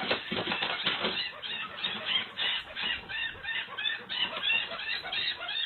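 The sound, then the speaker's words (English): A mouse with its leg caught in a trap screams in a loud, unbroken stream of shrill, frantic squeaks and squeals, with no voices. “The audio of that mouse screaming.”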